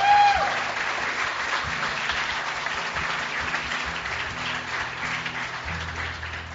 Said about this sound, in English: Yeah, that's all right. Go ahead and clap.